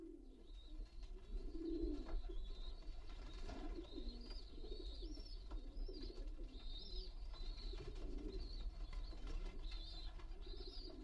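Several pigeons coo in low, throaty, overlapping bursts that run continuously, with faint higher chirps and a steady background hum beneath them.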